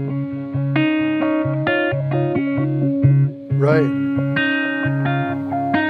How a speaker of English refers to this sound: Then you can turn it off and go to a crunchy thing for the chords. Yeah. You know, so I love the sweep echo is one of my favorites.